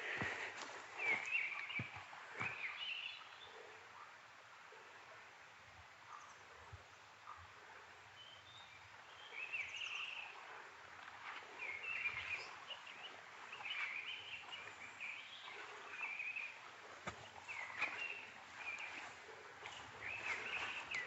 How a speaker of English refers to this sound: Try and get a bit closer. The trouble with missel thrush songs is that they have this sort of distant quality about them. So no matter how close you try to get, you never quite feel you're there. Quite ventriloquial, really.